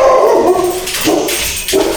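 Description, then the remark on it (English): A dog barks, several loud yappy barks with short gaps between them, no one talking over it. “No, they didn't even bark at me, man.”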